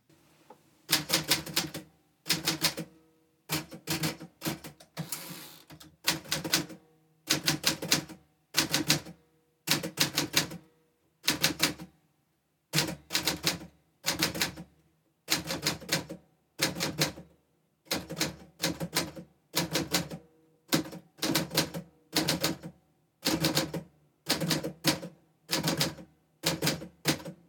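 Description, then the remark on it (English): A manual typewriter's keys clack in quick bursts of strikes as someone types, with short pauses between bursts and the ding of the typewriter bell. Steady throughout, with no voices present. “As you type, try and let your focus rest on the rhythm of the typing, the sound of the machine, the strike of the key slugs, the ding of the bell.”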